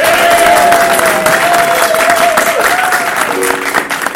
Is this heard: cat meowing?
no